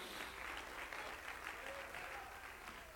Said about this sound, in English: Praise God. Clap your hands again to the Lord in Jesus' name.